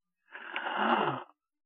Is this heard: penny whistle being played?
no